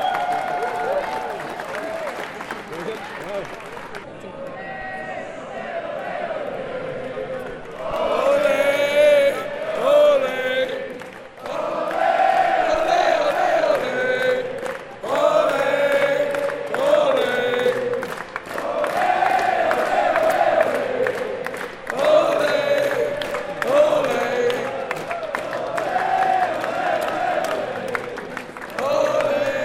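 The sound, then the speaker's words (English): A large crowd on the floor of the New York Stock Exchange cheers, whoops and claps after the bell is rung, with many overlapping voices; it starts somewhat quieter, then swells into a loud, sustained roar after several seconds. “Now we're here on the floor of the New York Stock Exchange.”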